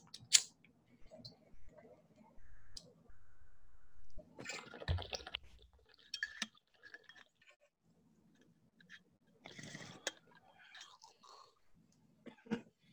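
Low gurgling of water bubbling through a bong during a long inhale, with scattered clicks, breathy exhales and soft rustling around it.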